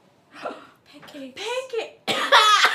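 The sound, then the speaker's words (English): A person coughs several times in quick succession, the bursts rough and throaty, growing louder, with the final cough the strongest, with no talking. “Editor Jason, put some effects on that cough.”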